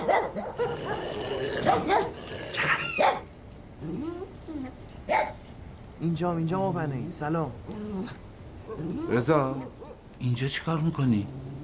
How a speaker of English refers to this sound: You get like the dog barking, kind of like a warning sign.